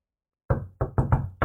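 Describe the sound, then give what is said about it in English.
Heavy, dull thunks of a body leaning against a wooden door, five in quick succession with a short gap after the first, fairly loud, with no voices. “Yeah, you lean against the door with just a thunk.”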